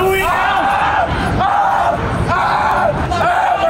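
A person screams in pain again and again, loud, high, strained cries coming in about four long bursts with rough noise and other voices underneath.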